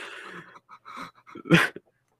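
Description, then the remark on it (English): A person imitates a ghost dog's barks and whimpers in a run of short vocal bursts, ending in one sharp, loud yelp-like woof before falling silent. “It's the ghostly travails of Ghost Dog. Woof. Woof.”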